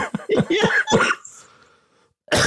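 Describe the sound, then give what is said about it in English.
A burst of throaty coughing and throat clearing from a person, several rough, closely spaced hacks, fading into quiet before another harsh noisy burst at the end. “There's that cough. Yeah, there's the cough.”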